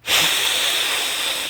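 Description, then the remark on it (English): A person hisses steadily for about a second and a half, a loud, breathy, high-pitched sound like a snake, starting abruptly and holding at even strength without any talking. “I'm hissing at you. That's my hiss.”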